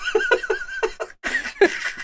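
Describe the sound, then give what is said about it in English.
A goat in a film scene screams in a rapid series of shrill, wavering bleats, followed by a longer, louder cry. It's loud, with no talking. “he's so much cleverer than just having screaming goats constantly”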